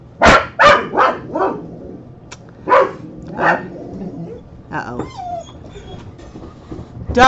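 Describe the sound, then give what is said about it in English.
Several excited dogs bark in quick bursts, with high whimpers and whines in between, as they greet a person who has just arrived. A person briefly speaks during the commotion. “The dogs are excited. They're excited to see you”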